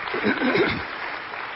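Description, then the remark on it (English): An audience claps for a young man in a steady, dense patter of applause, with a voice briefly calling out over it at the start before the clapping carries on alone, slightly softer. “How about a round of applause for this young man?”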